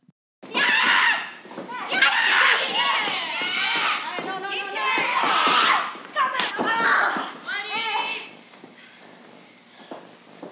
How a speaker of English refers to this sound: You hear her scream as she punches those forearms into Miko's chest. And then that last slap is a punch to the face to Takayuchi.